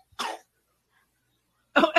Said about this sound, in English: I love how she just coughs right on you. Oh, yeah. If I'm getting COVID, it's going to be from her.